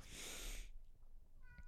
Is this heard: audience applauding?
no